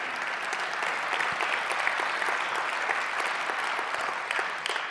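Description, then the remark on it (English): An audience claps steadily throughout, a dense, even wash of many hands with no pauses and no voices standing out above it. “And that you missed your chance to applaud, because that's the word of the Lord.”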